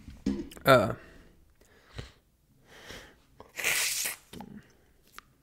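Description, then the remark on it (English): A single forceful sneeze: a sharp voiced intake and then a loud breathy burst, with a few quiet vocal murmurs and breaths around it. “Sorry, just sneezed my sins away.”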